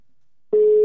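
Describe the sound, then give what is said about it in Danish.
After a moment of silence, a steady single-pitched telephone ringing tone starts abruptly and holds, loud and clean, as an outgoing call to Kim Palm rings through the line. No one speaks. “Vi ringer til Kim Palm.”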